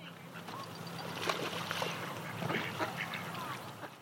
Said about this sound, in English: It is a sunny and windy September day and I'm down by the River Cam in Cambridge. There are a lot of very excited ducks, some swans, even a baby swan, well, a teenager really, and of course, the river itself.